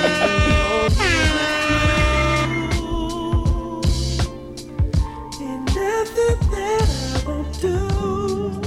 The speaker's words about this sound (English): Oh, yeah, let me get some air horns for this, man. Work the soundboards down there.